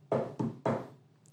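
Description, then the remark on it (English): Three heavy fist knocks pound on an RV door in quick, even succession, each a loud thud with a short hollow ring before fading into quiet. “So after pounding our fists on the RV door and wait for a response, hello?”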